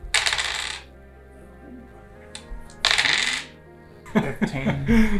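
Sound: rolling dice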